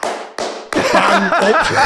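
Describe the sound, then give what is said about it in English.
Two slow, deliberate hand claps ring out loudly, spaced apart in a mocking rhythm, then voices and what sounds like snickering laughter break in over the rest. “A round of applause, Manchester. A sarcastic clap.”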